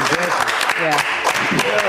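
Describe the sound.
Several people clap their hands in quick, uneven bursts of sharp, bright smacks over almost two seconds, while voices talk and laugh underneath the applause.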